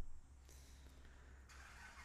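A car engine starts up and settles into a steady, low rumbling idle, with a couple of brief mechanical whooshes layered over the drone.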